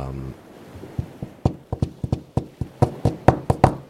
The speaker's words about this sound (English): you see a thieves' cant scratched into the side of the shell that describes a specific knock to open the door. It's a coded message of greeting. And what does that knock sound like? Well, it's more of actually like a rhythmic kind of